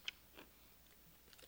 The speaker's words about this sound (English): All this crunch you're hearing is the crunch of a Hershey almond bar.